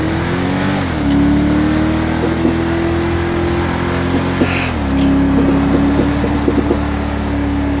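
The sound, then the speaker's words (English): A loud Dodge Charger engine drones steadily, its pitch stepping up and shifting as it revs and accelerates through gear changes, with no voices present. “it's because it actually technically is a sports car. I mean, it's a Charger, for crying out loud.”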